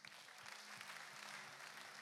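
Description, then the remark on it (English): A crowd applauds steadily, many hands clapping together in a dense, continuous burst that fills the space without pause, with a low rhythmic thump underneath. “You better clap.”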